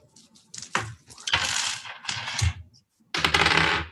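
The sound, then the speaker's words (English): A hard plastic d20 die, rolled for a performance check in a tabletop role-playing game, clatters and rattles across a tabletop in several bursts of bright, clicking impacts, fairly loud, with no one speaking. “Where did I put my D20?”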